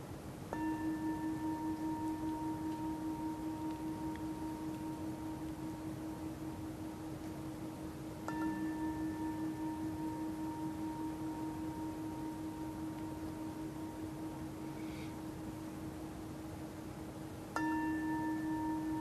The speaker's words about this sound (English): Let the sound of this bell arrive, come to you.